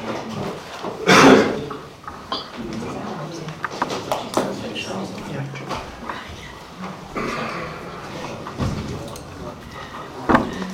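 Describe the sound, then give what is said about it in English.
At a town council meeting, a chair is dragged and set into place by a speaker, with a loud scraping clatter near the start followed by several lighter knocks and shuffles, while faint voices murmur. “I'll grab a chair if that's okay.”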